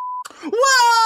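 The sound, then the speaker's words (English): A single flat, steady censor beep, bleeping out mention of a secret project, sounds briefly at the start, then cuts off as a voice rises into a loud, drawn-out wailing cry that holds to the end. “But Or we could do the thing where we beep it.”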